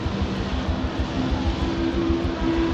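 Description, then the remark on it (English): Loud, steady rumble of about a dozen revving Harley-Davidson chopper motorcycle engines, a deep throbbing drone with a growling tone, running continuously above the noise of a crowd as the bikes ride down a hill through the crowd at about 5 p.m., just as the sun sets. “At about 5 o'clock that afternoon, just as the sun was setting, there was a rumble of revving motorcycle engines roaring above the noise of the crowd.”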